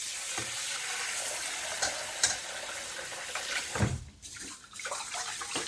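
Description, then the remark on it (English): Continuous swishing and sloshing of water with grainy rustling as rice is washed again by hand in a bowl of water, after being poured into a sieve and put back into the bowl, with a few louder splashes and a brief dip near the end. “I like to pour it into a sieve and then pop it back into the bowl and wash it again.”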